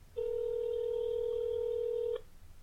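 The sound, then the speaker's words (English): A single steady electronic ringing tone from a phone call placed on speakerphone through an app sounds for about two seconds, clear and fairly loud against a faint low background hum, then cuts off abruptly. “It's ringing!”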